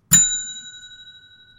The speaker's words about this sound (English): Yeah, I think we could hit the bell and